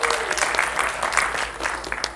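An audience claps steadily, a dense, sustained burst of applause with many overlapping hand claps at a fairly loud, even level throughout.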